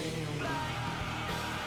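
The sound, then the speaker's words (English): A man's hoarse screaming rides under dense, distorted nu-metal band noise with an effected guitar, sounding raw and lo-fi like a garage demo recording, with the yelling steady and partly buried in the mix. “In the background, that screaming.”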